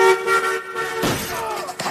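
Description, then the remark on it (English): A car horn blares steadily for about a second, then gives way to a loud crash as a car hits a person, with clattering, scattering debris that rings on briefly before fading. “I'd make him dress up like a hooker and make him stand on Broadway Street in New York City while I pretended to be a drunk John and accidentally hit him with my car.”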